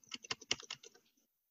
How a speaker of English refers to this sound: We can pick up your typing